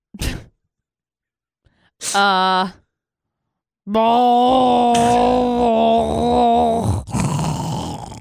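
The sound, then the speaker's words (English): A person imitates loud, gurgling snoring with their voice: a short snort, a brief groaning rasp, then a long, rough, rattling drawn-out snore, loud, with no talking. “It's a mix of a train rolling on ice, coughing, gurgling, mouthwash.”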